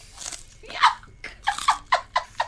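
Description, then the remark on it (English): A crisp crunch of someone biting into food, followed by several sharp, rhythmic crunching chews in quick succession, loud with no talking. “Let's hear the crunch.”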